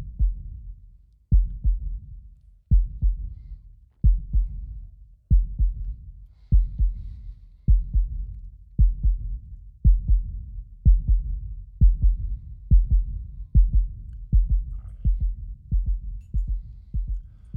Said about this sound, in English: I love that heartbeat sound. Makes me feel alive. Makes me feel alive.